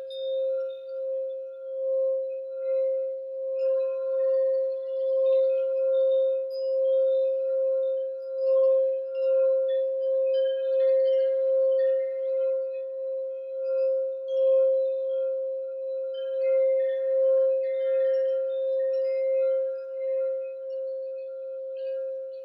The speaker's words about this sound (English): Chimes. I love that sound.